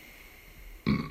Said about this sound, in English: Sorry, burp.